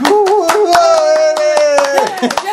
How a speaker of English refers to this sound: The podcast must be getting better because the applause keeps getting louder every week. We like to hear that.